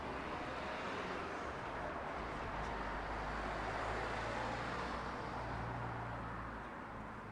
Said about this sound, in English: This is actually quite a main thoroughfare, so the traffic may very well increase.